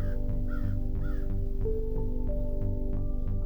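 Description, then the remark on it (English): A crow flying overhead caws in a quick series of harsh, rasping calls, clear, over a steady low droning hum in the background. “And as I say this, there's a beautiful bird, crow, some sort of bird that just flew overhead.”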